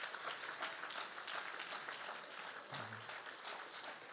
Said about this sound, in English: So clap your hands if you've ever been irritated. Clap your hands if the Bible has ever irritated you. Clap, this is your chance. Clap your hands if the preacher has ever irritated you.